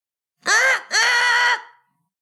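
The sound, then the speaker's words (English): A person imitates a raven with two loud, harsh, throaty caws, a short one followed by a longer drawn-out one that trails off, with no other talking, competing for the best raven caw to choose who goes first in a game. “And the method for choosing who goes first is who does the best raven caw.”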